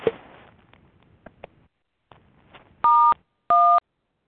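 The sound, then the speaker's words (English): Two loud telephone keypad tones from someone pressing keys on their phone during a phone call, each a steady dual-pitched beep lasting about a third of a second, sounding a moment apart after some faint clicks and rustling. “Yeah, someone is beeping on their phone. Please stop.”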